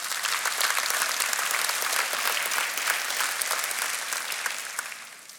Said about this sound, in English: You can clap for that one. That's an amazing thing.